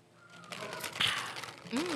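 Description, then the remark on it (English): A quick sip of Coke: soft fizzy crackling and a brief sharp slurp, followed by a short low hum or swallow at the end. No one speaks. “and I'm going to take a quick sip of my Coke.”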